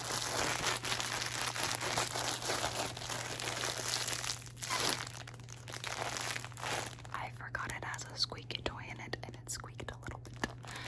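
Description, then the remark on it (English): Scrunchies are squeezed and handled, making a steady soft rustle and crinkle, with faint whispering underneath. Later the sound thins into sparser, crisp little crackles. “All right, and I've just got some scrunchies.”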